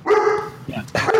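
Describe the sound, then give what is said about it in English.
A dog barks loudly, two drawn-out, harmonic barks with a brief pause between them, almost whining in tone. “and that dog does too. Yeah, apparently that dog's a big Ghost Rider fan.”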